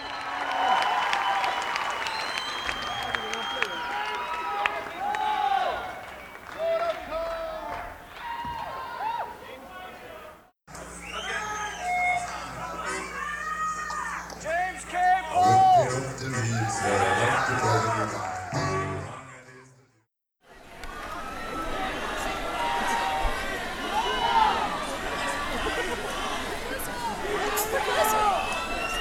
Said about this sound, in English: I do have like a lot of clips from live shows where fans are yelling out for this song in like 1992.